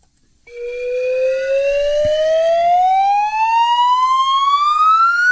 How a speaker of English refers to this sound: A slide whistle. You know that one. A slide whistle.